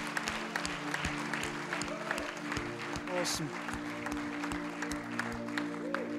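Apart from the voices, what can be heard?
audience clapping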